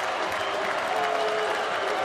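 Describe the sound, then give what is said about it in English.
A large arena crowd at a Huskies home basketball game rises to its feet and applauds steadily after an alley-oop near the end of the first half, a dense, continuous wash of clapping and cheering that stays loud and even throughout, with a faint sustained tone rising above the noise midway. “And the crowd comes to its feet and applause.”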